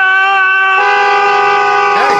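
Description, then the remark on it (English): A car horn blares in one long, loud, continuous blast lasting a couple of seconds, its tone wavering and bending near the end, with faint background noise underneath; people honk it while yelling during a domestic dispute. “they're over there honking the horn and they're yelling.”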